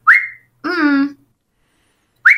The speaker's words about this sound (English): and obviously I whistle a lot and I pop